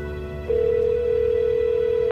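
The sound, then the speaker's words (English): One ringback tone from an outgoing phone call to the house: a steady, mid-pitched electronic tone that holds for about a second and a half over faint line hiss, then cuts off abruptly. No one speaks. “Sometimes I call the house just to hear her voice.”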